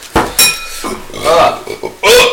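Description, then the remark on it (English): A couple of short burps mixed with the clink of dishes and cutlery, as if at a table mid-meal, with a faint voice in between. “Oh, burps.”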